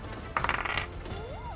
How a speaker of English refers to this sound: Well, I rolled a fuck me on my fuck you dice. That's a nat one